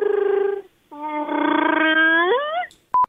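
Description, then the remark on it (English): A caller's message left on a show's answering machine imitates a Wookiee roar: a short growling bellow, a brief pause, then a longer wavering howl that rises in pitch at the end before cutting off, followed by a faint click. “And on Friday, if you remember on the machine, we had a lot of Wookiees, a lot of Wookiee impressions.”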